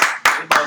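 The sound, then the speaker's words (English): Three sharp, bright hand claps for Eli land in a steady, even rhythm, each ringing out briefly before the next, with no talking over them. “God damn, clap it up for Eli, right?”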